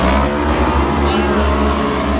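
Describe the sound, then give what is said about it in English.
Loud, steady roar of race car engines running bumper to bumper as the field is led around just before the green flag drops, a dense droning wall of engine noise with low rumbling tones that holds constant throughout. “All right, green flag's about to drop. Ace car pulling her field through the split lane, and Cody Myers get on top.”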